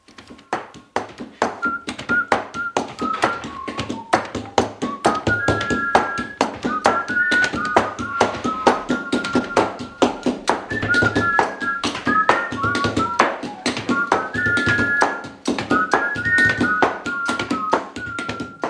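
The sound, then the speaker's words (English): Postal workers in Ghana rhythmically stamp and cancel mail in a steady, clacking beat of sharp thuds, while a high whistled melody weaves over the percussion throughout. “This is a famous recording of postal workers in Ghana who have done the job of cancelling stamps so much that they've built up a whole music form around the inking, stamping, snipping of scissors.”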